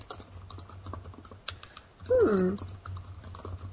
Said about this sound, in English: Someone's over there typing at 95 miles an hour.